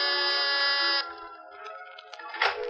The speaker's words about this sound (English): you've got your finger on the door buzzer of Mr. Carr's cloud-high penthouse apartment